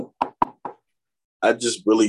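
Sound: knocking on wood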